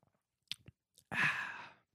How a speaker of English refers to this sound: Let me take a sip of this drink, and then I'm going to get into this. So, you guys want to listen to this drink?